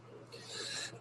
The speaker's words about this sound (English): Let me clear my throat.